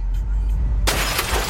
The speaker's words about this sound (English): A man smashes in a car windshield with a tire iron to save the baby trapped inside. It happened in Harlingen, Texas, where it felt like 105 degrees. First, the Good Samaritan hits the glass with all his might, 16 times